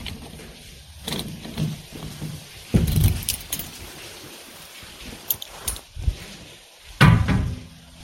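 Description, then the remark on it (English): Keys jingle and rattle in short bursts as a ranger pulls a key from his pocket, followed by the key turning in the lock and the metallic clunk of a heavy cave entrance door being unlocked, with steady wind-like background noise. “Ranger Chris pulls a key from his pocket and unlocks the door.”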